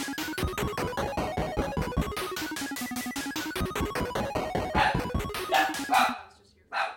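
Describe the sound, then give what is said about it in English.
Dogs bark loudly in a rapid, overlapping burst of yips and barks that runs almost without pause for about six seconds before cutting off. “Podcast is brought to you by Inopportune Barking.”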